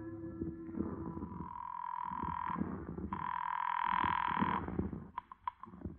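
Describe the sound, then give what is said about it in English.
A call from a hotel room phone to the Boston police ringing on the line, two long buzzing rings separated by a short pause, followed by a few quick clicks as the call connects. No one speaks. “But I wasn't exactly cooing when I got to my hotel room phone and put a call through to the Boston police.”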